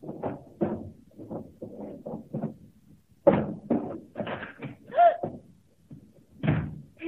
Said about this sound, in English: I stood there, opening and shutting drawers.